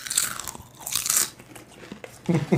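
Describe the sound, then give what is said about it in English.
Loud, crisp crunching from chewing Pringles chips while leaning towards a super condenser microphone, several bites in an irregular rhythm with brief quieter pauses between them. “And please chew them while leaning towards what you got to do is...”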